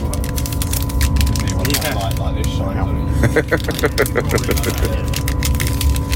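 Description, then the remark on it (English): A Mars Duo chocolate bar wrapper is torn open: a quick series of crisp, crinkly rips and rustles, over a steady low rumbling background. “Would you like to share a Mars Duo with me and seal the deal?”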